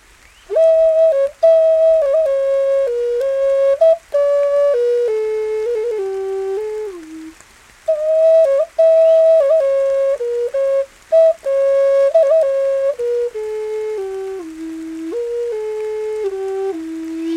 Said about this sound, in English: As the rain slows down, the birds begin singing again, and the flute begins to play.